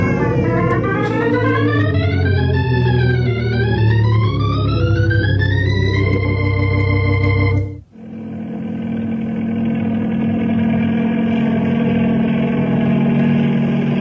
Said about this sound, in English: We'll try to get to that cabin by copter.